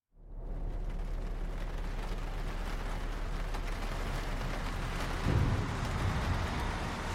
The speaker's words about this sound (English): Attention passengers en route from Toronto to Niagara Falls. Heavy rain is adversely affecting road conditions, necessitating adjustments to our speed of travel.